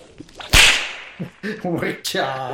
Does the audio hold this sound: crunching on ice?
no